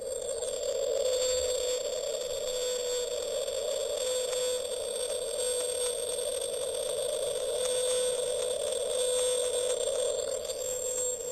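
A call of the 52 Hertz whale, known as the loneliest whale in the world, recorded in the ocean, drones on without a break: one steady mid-pitched tone with a thin, bright overtone above it, holding the same level throughout with no talking.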